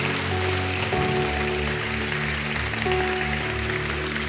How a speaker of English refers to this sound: Go ahead, give God a hand clap of praise.